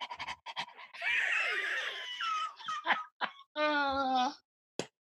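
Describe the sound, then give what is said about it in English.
A person imitates a panting dog with quick, rhythmic breathy huffs, followed by a longer raspy exhale and a short, strained whine-like vocal note. “Doing a dog, like a panting dog thing.”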